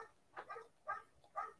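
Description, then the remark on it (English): A dog barks three times in a steady rhythm, each bark short and evenly spaced, fairly quiet, with no talking over it. “I was like, "Oh, why is he scared of that dog?”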